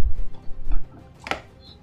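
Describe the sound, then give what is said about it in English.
Dice clatter briefly across a hard tabletop during a tabletop role-playing game, fairly quiet: a few quick clicks over a low rumble, then one sharper knock as they settle. “And tell me your AC while I roll this.”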